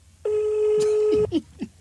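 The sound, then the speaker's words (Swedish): Telephone keypad tones: a steady electronic tone holds for about a second, followed by a few short beeps as a mother's phone number is dialed on a phone, with no voices. “Upp med mammas nummer. Slå det på telefonen.”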